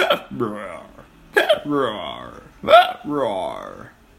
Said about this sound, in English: But the leaves gave Jack an upset tummy. And every time he ate a leaf, he got hiccups.